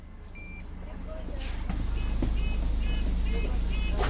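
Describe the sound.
A steady low engine rumble inside a moving hybrid electric bus travelling through the streets of London, with a series of repeated electronic beeps chiming at regular intervals and faint background voices in the cabin.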